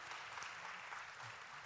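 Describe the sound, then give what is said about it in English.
A burst of audience applause, a dense, steady patter of many hands clapping at once, fairly faint throughout with no voices rising above it. “That's worth an applause.”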